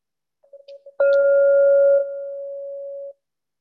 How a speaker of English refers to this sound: Hear three bells. One in just a moment and one midway through. And then the concluding bell will be at 60 minutes from now.